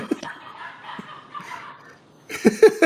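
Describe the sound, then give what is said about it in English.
Dogs barking: a few faint, scattered yaps over a low background, then a loud burst of rapid, overlapping barks at the end. “And these fucking idiot dogs, I swear.”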